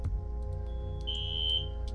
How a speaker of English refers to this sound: Did we set off a smoke alarm? Maybe we did. All right. So, guys, we'll be right back, guys. We're going to go make sure the building's not on fire.